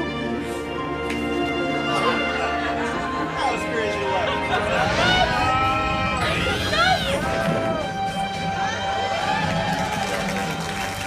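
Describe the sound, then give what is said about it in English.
A studio audience applauds and cheers steadily for about eleven seconds, with a dense wash of clapping under rising and falling whoops and excited shouts from the crowd. “Studio audience applauding.”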